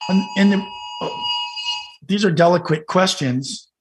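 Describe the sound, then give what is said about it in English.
A phone's tornado warning alert blares a steady, harsh electronic tone for about two seconds while someone talks over it, then the alert cuts off and the talking continues. “It was a tornado warning of all things we were joking about on my phone.”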